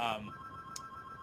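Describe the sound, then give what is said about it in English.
A phone rings with a steady high electronic tone, briefly overlapping a voice at the start, then continuing alone at a moderate level with a short higher chirp partway through. “and my phone is ringing, and it's going to continue to ring.”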